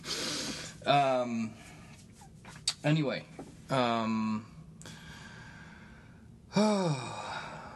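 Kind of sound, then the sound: human body sound, heavy breathing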